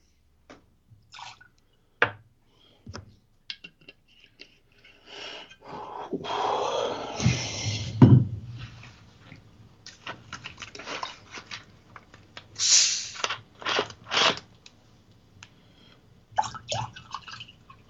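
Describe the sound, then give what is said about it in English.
A drink being poured, a few seconds of splashing liquid rising in the middle, with scattered clinks and small handling clatters before and after. No one speaks. “I can totally hear you pouring that right now.”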